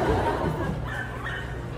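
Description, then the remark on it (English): A dog whimpers and gives a couple of short, high yips over a steady low background hum, moderately loud. “The dog doesn't want to read it.”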